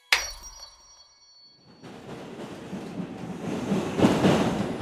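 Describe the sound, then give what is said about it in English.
A bright metallic chime rings out at the start, then after a brief lull a subway train's rumbling roar rises and builds steadily, fairly loud, with no one talking. It is a subway ride to a vaccination site in the Bronx, with the next stop Pelham Parkway. “I had to take the subway.”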